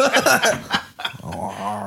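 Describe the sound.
A person imitates a dog with a short run of throaty growls and whiny yelps, voiced in uneven bursts before settling into a sustained rumbling snarl.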